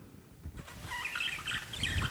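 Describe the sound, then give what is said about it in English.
Birds chirping in a quick series of short, high tweets, fairly faint, over a steady low background rumble, with no one talking. “I hear birds.”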